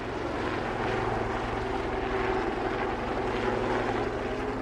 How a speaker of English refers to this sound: With a Lynx helicopter flying overhead and fast response boats speeding along the river, this demonstration of firepower offered a glimpse into the security operation behind the Games.